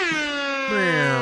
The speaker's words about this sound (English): Yeah, there's horns all over this fucking episode. There's those limp air horns on this limp boy.